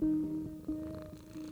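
Cats purring as they rub against someone's ankles in the island village of Ulthar, a low continuous rumble with soft rhythmic pulses lasting a moment or two, steady and fairly quiet with no talking over it.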